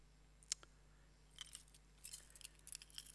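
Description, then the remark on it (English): A bunch of keys jangles in short metallic bursts, a sharp clink early on followed by longer jingling shakes, moderately loud with no talking. “There are so many rooms to lock and unlock.”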